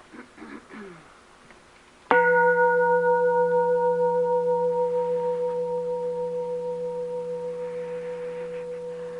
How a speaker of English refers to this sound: So I'm going to ring the bell so you can be sure that your program is broadcasting before you leap up and start.